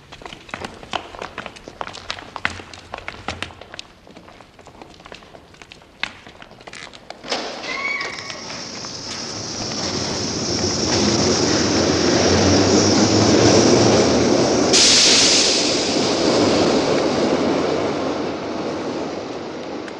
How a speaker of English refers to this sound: he's exiting the subway, because you get a whole array of shoes. You get men's shoes, you get ladies' shoes. You also get the sound of the train door closing and people just scurrying out. It's so good.